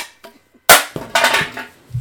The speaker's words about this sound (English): Just smashing Red Bull cans around. Okay. Excellent ASMR for the beginning of this podcast.